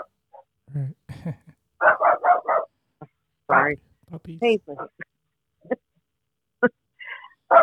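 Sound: puppies barking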